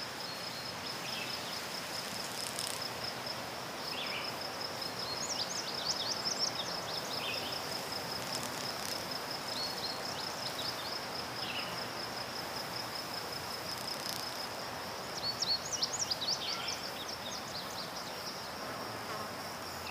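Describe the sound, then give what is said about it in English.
A steady, high-pitched drone of insects fills the air outdoors at night, with brief bursts of sharper chirping rising from it now and then. It is fairly quiet, with no voices. “He can hear the wind in the trees, little insects coming.”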